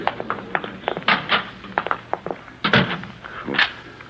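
A door thuds shut amid a series of sharp clicks and rattles, followed by the metallic snap of a lock being turned, with no voices.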